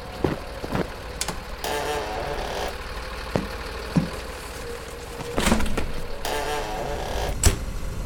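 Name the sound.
engine idling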